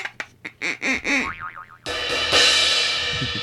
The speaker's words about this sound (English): Wait, I just heard boing. Was that you?